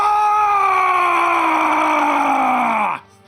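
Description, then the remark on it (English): A person roars in a loud, sustained, strained growl lasting about three seconds, its pitch sinking steadily before cutting off abruptly, a vocal imitation of a furious roar of pure frustration and rage. “going to throw his hands down towards the ground, point his head towards the sky, and just let out this like roar that fills the caverns, that just is this pure frustration and rage of not having his typical success with his fists.”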